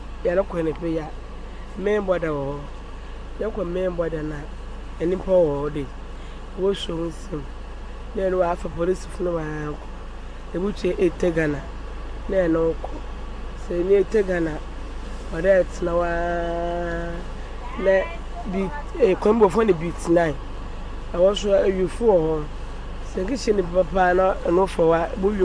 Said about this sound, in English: I am on a journey to Aflawo to ascertain if indeed the land borders are closed. In this STC bus heading to Aflawo at about 5:20 a.m.,